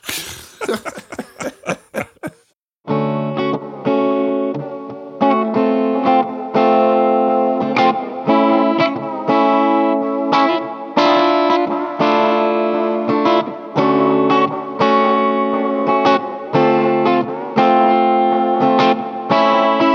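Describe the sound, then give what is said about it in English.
After a brief noisy opening burst, an electric guitar plays a steady run of mellow, jazzy chords, strummed in a regular rhythm with rich, sustained tones and a touch of effects. “That was pretty cool. Some mellow jazzy stylings. It had some cool chords in it.”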